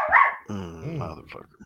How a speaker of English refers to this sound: A little mouthy fucking dog there. Pet that dog. Can I pet that dog?